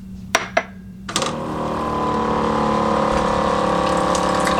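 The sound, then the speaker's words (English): A few sharp clicks, then a steady stream of water pours from an Aquasana water filter dispenser into a container, with a low pump-like hum running underneath the whole time. “So let me just show you filling up with the Aquasana.”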